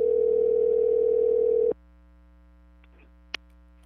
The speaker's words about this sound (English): While we were on the phone there, my sister-in-law clapped back, called. She called. Let's hit her up on FaceTime real quick.